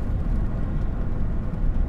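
A steady, low rumble of road and engine noise fills the cabin of a moving car, constant and fairly loud throughout, with no voices.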